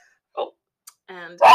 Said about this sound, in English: then what do you do if you have a dog that only wants to bark when you record a podcast? What do you do?